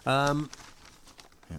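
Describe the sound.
A short spoken sound gives way to about a second of soft papery rustling and crinkling as a page is turned to the next bit, before a voice starts again at the end.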